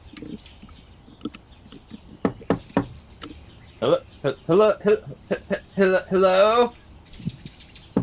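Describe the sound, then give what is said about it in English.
Three or four sharp knocks rap on the door of a house in quick succession, followed by a voice speaking, with faint birds chirping in the background. “So he just turns to the right and marches up to the first house and knocks sharply on the door.”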